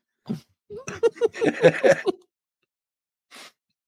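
A person coughs: one short hack, then a rapid run of about eight harsh, throaty coughs, and after a pause a single final cough. No one speaks.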